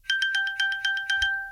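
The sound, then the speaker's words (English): An Apple Watch ping chime, set off by a double tap to help locate the watch, sounds alone: a bright, high electronic tone rings steadily while quick shimmering pulses repeat in a fast, even rhythm, then the ringing lingers before fading. “As I double tap this, you will hear the Apple Watch chime away.”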